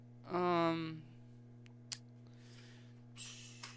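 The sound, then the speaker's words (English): Paper clips clicking in a studio: a few light, sharp metallic clicks and some soft rustling, scattered irregularly, following a brief vocal sound at the start. “Paper clips in the studio.”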